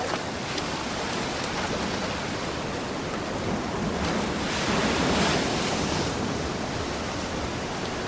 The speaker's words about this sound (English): It's going to be hard to hear anything over the waves.